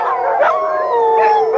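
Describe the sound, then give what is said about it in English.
Dogs howling together in long, wavering, overlapping tones that slide up and down, loud, with no talking. “But who's going to watch the dogs if I come down?”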